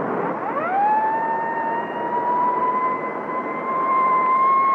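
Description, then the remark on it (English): A police car siren, switched on to chase a speeding car doing at least 80, winds up quickly from a low pitch and then holds one loud, steady wail for several seconds over a rough background rumble, with no voices. “You better have the siren, Barclay.”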